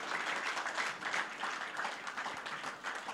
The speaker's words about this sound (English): Can someone celebrate Jesus with a round of applause?